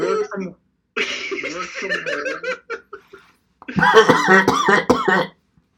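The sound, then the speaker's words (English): Loud coughing comes in two bursts separated by a short pause, mixed with laughing, giggly voiced sounds, with no clear speech. “I'm not sure which one of that cough was real or not.”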